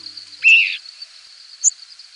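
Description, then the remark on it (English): Two brief, high nocturnal flight calls from birds migrating at night, a longer buzzy note followed by a short thin one, heard over a steady background drone of insects. “Known as nocturnal flight calls, many species can be identified based on their signature sound”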